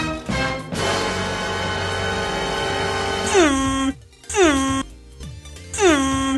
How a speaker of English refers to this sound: Yeah, air horn.